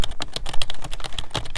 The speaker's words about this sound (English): Me, I've actually got, like, the Maxis 35 keyboard with the GD LED lights. It's actually pretty low-key fire if you're looking to, like, do, like, a lot of movements. Like, you can hear, like, just listen to this.